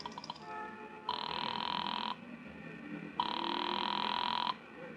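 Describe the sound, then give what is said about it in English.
A telephone rings twice on the line after a call is dialed from a coin phone at a filling station on a corner, each steady electronic burst about a second long with a pause between, heard alone over a faint low hum. “went inside to the phone. I started to call police headquarters, but instead dropped the nickel in and dialed Republic 2809 again”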